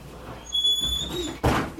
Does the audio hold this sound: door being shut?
yes